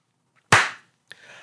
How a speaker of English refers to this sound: All right, I'll clap my hand and we'll start again.